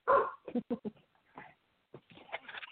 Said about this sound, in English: My dog is just going, of course, I close the door and she runs away.